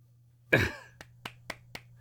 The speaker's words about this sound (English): He's clapping. You just can't hear it.